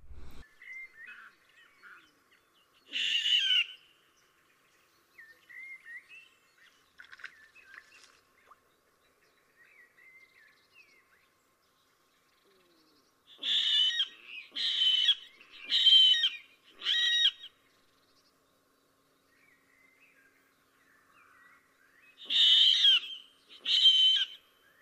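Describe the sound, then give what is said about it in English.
A water rail gives harsh, high-pitched squealing calls in short bursts: one early squeal, a run of four pulsing squeals in the middle, and two more near the end, with faint chirps between. “so they have a loud call, which sounds a bit like a long drawn out, high pitched squealing piglet.”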